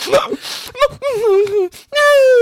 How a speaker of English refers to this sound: Also, who sniffles like that?